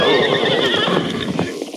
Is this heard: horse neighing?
yes